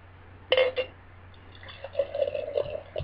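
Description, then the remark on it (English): Beer brewed in Chico, California, and Mills River, North Carolina, pours into a glass, a steady gurgling stream with the fill rising toward the end. A brief sharp clink comes just before it, over a low steady hum. “And we've got the opening. Yeah. And the pour.”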